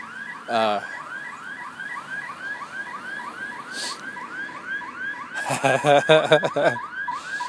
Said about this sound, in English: the frustration of people coming home and setting off their security alarm.